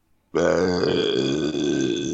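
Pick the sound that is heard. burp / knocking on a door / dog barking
burp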